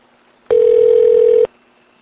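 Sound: telephone call ringing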